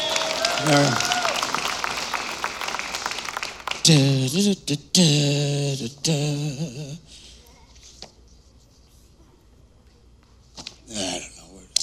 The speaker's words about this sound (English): Everybody, clap for the pretty girl.